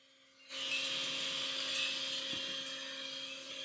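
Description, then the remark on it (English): A vacuum cleaner switches on about half a second in and settles into a steady, loud whirring roar with a high hiss and a low constant hum, with no talking. “That's the vacuum.”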